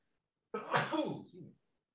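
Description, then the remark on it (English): A single sharp sneeze bursts out, loud and abrupt, with a brief trailing exhale as it fades, surrounded by silence. “Bless you.”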